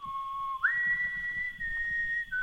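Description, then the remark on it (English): A person whistles a short refrain from West Side Story in a barn, clear sustained tones stepping up in pitch and holding, with no talking, moderately loud. “whistle a refrain from West Side Story through the rafters.”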